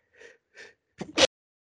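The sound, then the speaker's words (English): A single sneeze: two short breathy inhales build up before a sharp, loud, hissing burst that stops abruptly, followed by silence. No talking. “Bless you.”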